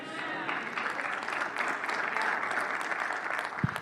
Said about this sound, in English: Just to encourage you, as we continue to go on in this message, that was a beautiful golf clap.